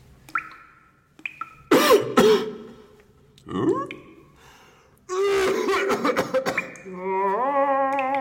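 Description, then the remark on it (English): A man makes a series of strange vocal calls imitating the Sasquatch mating cry to lure one, broken up by harsh coughs and throat clearing, then a long wavering, warbling howl that fades out. “And I know the Sasquatch mating call of the ancient ones.”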